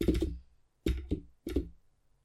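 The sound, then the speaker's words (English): A handful of sharp computer keyboard taps land in an uneven rhythm, each a solid clack with a short ringing tail, separated by brief silences and with no voices. “And every tap of the keyboard is not going to sound good on the”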